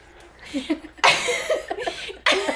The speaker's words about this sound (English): Sorry, we're laughing at my stupid ass cough. I'm trying to cover the mics.